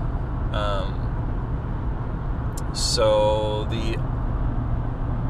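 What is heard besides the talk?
truck interior road noise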